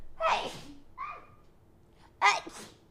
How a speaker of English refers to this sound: Oh my god, I'm gonna sneeze.